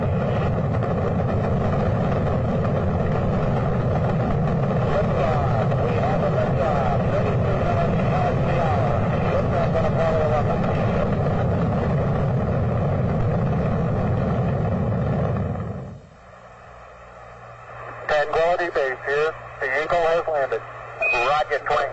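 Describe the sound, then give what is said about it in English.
The Saturn V rocket's engine roar at the Apollo 11 launch from Cape Canaveral, Florida, in July 1969 rumbles loud and steady for about fifteen seconds, then drops away abruptly, followed by voices that sound like radio transmissions. “the Apollo 11 mission took off from Cape Canaveral, Florida.”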